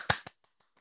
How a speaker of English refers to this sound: Hold on. Like, I think we need an applause. Like, do we have sounds? Like, we don't have sound effects, so I'm just going to clap.